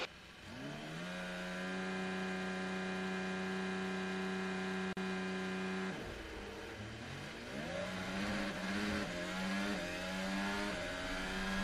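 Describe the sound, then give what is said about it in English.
A racing car engine, the last car approaching the starting grid, drones steadily, then drops and revs up again with rising, whining pitch sweeps, loud and continuous with no voices. “Last car's approaching the grid now.”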